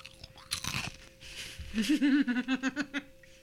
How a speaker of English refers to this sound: They're really crispy. Mm-hmm. They got a good crunch. See, I'll do some ASMR.